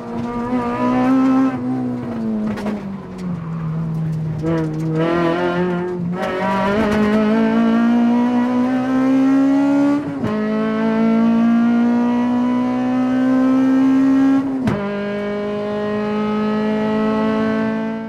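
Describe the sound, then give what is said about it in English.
A Prius car engine revs loudly and steadily for about eighteen seconds, its droning pitch dipping and climbing several times, with no talking. “Here is what that Prius sounds like, that Prius engine.”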